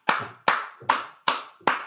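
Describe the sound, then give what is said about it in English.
Five sharp hand claps in a slow, even rhythm, each a crisp bright smack with a short decay, like a lone person applauding. No voices. “Let the applause die down a little bit.”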